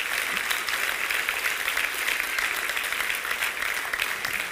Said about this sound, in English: Let's give all the women a hand clap this morning.